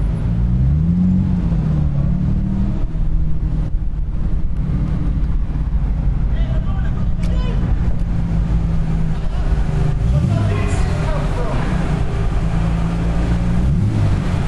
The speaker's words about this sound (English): So I'm going to play you some of the sounds we've recorded of a trip to Le Mans. The first one, the sound of boarding this ferry.